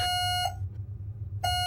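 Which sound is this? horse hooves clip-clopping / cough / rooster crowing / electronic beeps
electronic beeps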